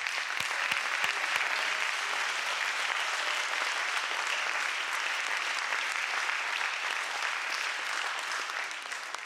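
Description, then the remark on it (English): A standing church audience claps their hands together in worship of Jesus, a dense, steady wash of applause lasting several seconds, bright and even throughout, with no voices standing out above it. “If you're ready to do that, will you stand and clap your hands, and let's give Jesus a little worship.”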